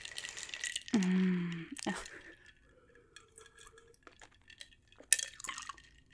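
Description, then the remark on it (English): A noisy slurping sip of homemade hot cocoa made with cocoa powder, followed by a low hummed "mmm" and a wet swallow, then soft clinks of a mug and a sharp tap near the end. “Literally, let me take another sip to give you guys a little taste test and some ASMR.”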